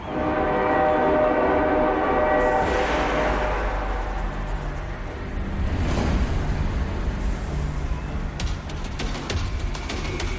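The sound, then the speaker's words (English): A loud, sustained train horn blares over heavy rumbling for the first few seconds, then gives way to a continuous roar and clatter of the Tomorrowland train rushing by. “Brace yourself, for the Tomorrowland train is coming your way.”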